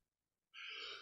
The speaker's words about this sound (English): Bless you.